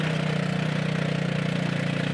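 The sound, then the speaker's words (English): A tuk tuk of The Original Windermere Tuk Tuk Company climbs a steep road snaking up a mountain pass in third gear on a mostly clear day; its small engine drones steadily at a labored mid-low pitch, the pulsing putter constant and loud throughout with no voices. “THE ORIGINAL WINDERMERE TUK TUK COMPANY”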